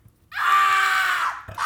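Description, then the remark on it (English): A person imitates the loud drunken screech they used to make when blacked out in college: a high-pitched screech held for about a second, a brief break, then another shrill, wild screech. “I would do this thing when I would black out where I would just screech really, really loud, and so...”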